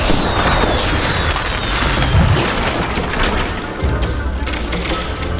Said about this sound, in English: There's a tripwire on the drawbridge. It's rigged full of explosives. And now for the grand finale of fireworks jamboree! I'm the huff and puff and blow it all down!